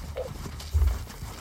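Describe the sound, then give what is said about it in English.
Horse hooves clip-clop in a few dull, uneven thuds as the horses are being hitched up, fairly quiet, with a faint background murmur and no clear talking. “He's just gonna start hitching up the horses anyway.”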